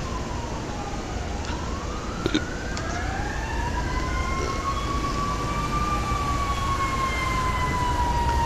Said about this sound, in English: Here come the fire department.